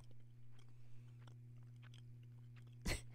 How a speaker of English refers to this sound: Oh, I can hear all the chewing. I know. It was so much chewing.